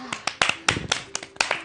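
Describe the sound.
A brief burst of applause: a handful of sharp, uneven hand claps in quick succession, with a faint voice murmuring underneath.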